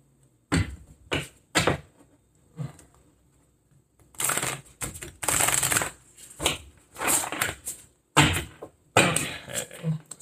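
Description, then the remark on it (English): Tarot cards being shuffled: a few quick papery snaps at first, then longer stretches of dense, crisp riffling and slapping that come in bursts with short pauses between them. “I'll shuffle these again.”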